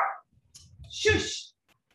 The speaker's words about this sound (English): All right, so sorry, somebody rang the bell, so of course the dogs went crazy.